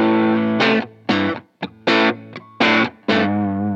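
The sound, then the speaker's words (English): A 1967 distorted electric guitar with two lipstick pickups and a vibrato plays a series of loud, choppy chord stabs with short gaps between them, a sustained chord ringing out at the end. No talking. “This is a birth year guitar for me.”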